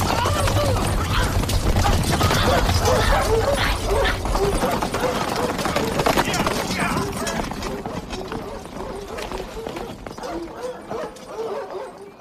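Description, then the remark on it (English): Dogs bark over and over in quick, overlapping yaps, loud at first and easing slightly, over a busy, rumbling background with steady clatter, in a film scene where riders gallop by on horses and no dogs are on screen. “There's a distinct sound of dogs barking.”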